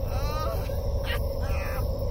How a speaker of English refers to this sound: It's a stupid bird! A dumb fucking bird!